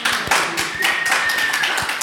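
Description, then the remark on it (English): A small group at a Chicago Foodways Roundtable meeting claps together for a couple of seconds to welcome a guest, a dense patter of individual hand claps with a faint whistle-like tone threading through. “if you come more often, you get more you get an applause.”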